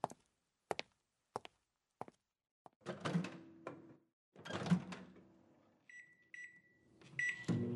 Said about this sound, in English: But first, let me put my burrito in the microwave.